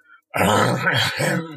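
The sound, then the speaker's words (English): A voice imitates hens near a chicken coop making a cough-like growl: one loud, raspy, rumbling burst lasting over a second, with no other sounds around it. “But this time, they made a sound that sounded like a cough mixed with a lion's growl.”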